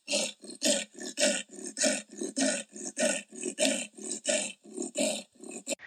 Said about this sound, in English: And when the leopards call, it sounds crazy. You'll have to find a recording and put it in your podcast.